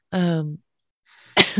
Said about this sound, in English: Ooh, I done caught the cough, y'all.